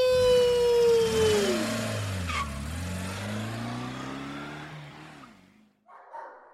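A loud SUV engine roars, its pitch sliding downward as it speeds away, leaving a rumbling, gradually fading drone before cutting out.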